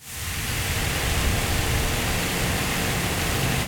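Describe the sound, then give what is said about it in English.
Steady, forceful rushing of water gushing and spraying like a geyser from a ruptured water main on 11th Street just off Twin City in Nederland, Texas, a dense continuous roar that holds constant throughout with no voices. “You see there, a sudden geyser seen in Nederland yesterday. Water main ruptured on 11th Street just off of Twin City.”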